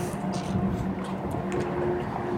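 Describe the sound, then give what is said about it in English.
A giant Miller Lite brewing truck rolls past, its engine giving a steady low rumble with a faint droning hum over broad road noise, holding an even level throughout with no voices. “The giant Miller Lite brewing truck driving right by.”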